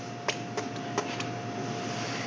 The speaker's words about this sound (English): When you microwave a baked potato, you know you want to put holes in it so that it doesn't explode in your microwave. So I just have a sharp knife and I'm poking holes in this spaghetti squash.